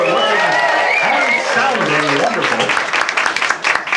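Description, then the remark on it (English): A live audience at sea applauds steadily for several seconds, dense clapping with voices and some cheering mixed in over the top. “A round of applause for the audience.”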